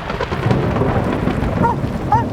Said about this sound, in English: I sit on, of all things, a metal bench between an old paddle wheel boat and an IMAX theater in New Orleans. My green tennies, walking shorts, and my black t-shirt getting soaked from a driving rain. Maybe one of those lightning bolts will end it all.